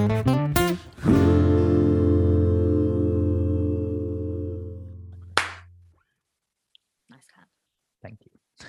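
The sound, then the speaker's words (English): A single sharp hand clap cracks out as a long, ringing musical tone fades away, followed by a few faint, brief sounds and silence. “And so begins episode 18 with a nice clap.”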